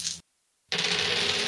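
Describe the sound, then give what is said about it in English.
A short burst of clattering, then a brief silence, followed by a sustained rattling of dice tumbling across a table. No one speaks. “Casting this at a level 3, and wow, these dice know how to roll high.”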